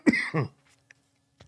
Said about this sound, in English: And I have to have Halls. I have to be using Halls or else I start choking and coughing a lot.